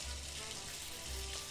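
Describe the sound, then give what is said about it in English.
Shower water runs in a steady, dense hiss with a faint low rumble, holding an even loudness throughout with no voices. “Oh, I love showering.”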